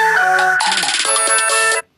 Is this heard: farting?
no